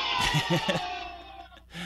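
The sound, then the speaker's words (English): Young children cheer and shriek in a quick burst of high, excited voices during the first part, then the noise fades to a quieter, murmuring tail. “The little kids cheering.”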